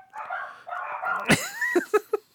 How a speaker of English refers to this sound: can you hear my dogs? The dogs are like, you said, no joke. And the dogs are like, yep, they think it's a joke.